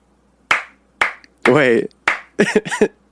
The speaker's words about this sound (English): Wait. It's just longer between claps.